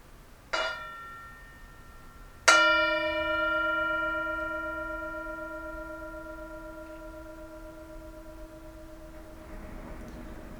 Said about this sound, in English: As usual, we have the mindfulness bell, and you're invited to enjoy the sound of the Tibetan bowl, to enjoy the present moment with the sound of the bell.